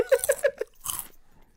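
Loud crunching as a pretzel is bitten and chewed: a quick series of sharp crunches followed by one longer, noisier crunch, then quiet.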